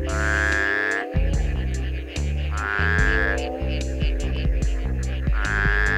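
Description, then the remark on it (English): A shovel-headed tree frog gives low, nasal, honking calls, repeated in steady succession, loud and buzzy, with no one talking. “Its call is a single low-pitched note that kind of sounds like someone blowing their nose.”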